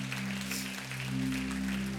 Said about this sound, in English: Can we just give a big clap to Jesus and thank him?